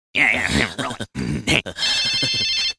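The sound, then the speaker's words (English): A telephone rings in short, warbling electronic bursts, loud, with a voice murmuring alongside the ringing. “And so he's like telling them he's not going to give them candy or whatever, but then his phone rings.”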